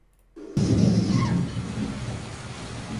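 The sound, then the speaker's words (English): A sudden loud crack of thunder bursts in after a brief quiet moment, then rolls and rumbles away over the next couple of seconds against a steady hiss like rain. “Yes, there is a thunderstorm playing out, isn't there?”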